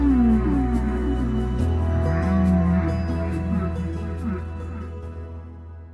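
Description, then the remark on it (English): Low, gliding moans and whoops of whale calls rise and fall underwater in the ocean over a steady deep rumble, with faint rhythmic ticking above, fading gradually toward the end. “we talk about some of the ways that there is noise pollution in the ocean and how that's affecting some of these animals like whales.”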